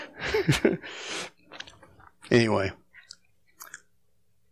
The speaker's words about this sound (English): chewing on the battery. Ah, you're just crazy. That won't kill him.